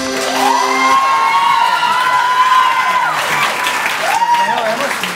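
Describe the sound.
A loud audience claps steadily throughout, with cheering and a few high, rising whoops from voices in the crowd riding over the dense applause.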